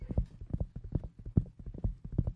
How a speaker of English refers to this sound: And of course, they were on their horses and were galloping towards the gorge.